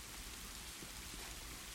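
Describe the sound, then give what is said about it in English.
Cold, steady rain falls at a college football stadium, heard from a steel locker room, in a continuous, even hiss of patter and drips, fairly soft and unchanging throughout, with no voices present. “A sharp whistle from wind gusts fell between the metronomic drip-drop of rain”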